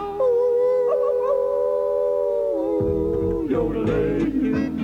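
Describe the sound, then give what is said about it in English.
Human voices imitate wolves with a long, sustained howl that holds steady, then slides lower and breaks into rougher, overlapping yelps near the end, loud. “And holler and howl at the moon.”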